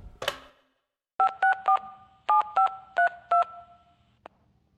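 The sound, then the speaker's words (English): A phone number is dialed on a keypad: seven crisp dual-pitched touch-tone beeps, a group of three and then four, after a brief clatter of the handset being picked up. No one speaks. “I'll give him a call.”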